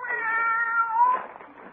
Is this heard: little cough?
no